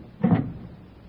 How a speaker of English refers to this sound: And at that moment, a woman walks down the street, up the steps to number 644, takes out a latch key, opens the door, and walks into the apartment as the clock strikes 8.